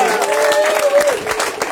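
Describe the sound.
An audience gives a standing ovation, bursting into steady, dense applause, with cheering voices and a rising whoop riding over the clapping in the first second before the clapping carries on loudly.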